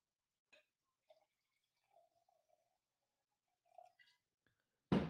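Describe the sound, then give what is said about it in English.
Wine glugs softly from a bottle into a glass in a few faint, uneven gurgles and trickles, quiet, ending with an abrupt loud clunk. No one speaks. “If you want to take me to bed, this is the perfect time because I'm going to pour another glass of wine.”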